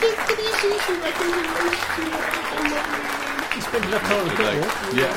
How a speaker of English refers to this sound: Round of applause for